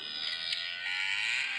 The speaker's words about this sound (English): Here's the tone. I just want to play it for you, all right? Now, hopefully, if you're watching online, you'll be able to listen in. I've got this maximum volume. Did you hear that? Here's the tone. Here it is again. What is it? It's a cow, right?